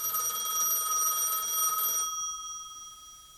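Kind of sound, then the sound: household object, telephone ringing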